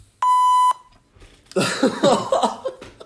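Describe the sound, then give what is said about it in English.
A single loud, steady censor bleep lasting about half a second, covering a swear word, followed after a brief pause by people's voices reacting in a burst of noisy chatter. “the buzzer goes off when”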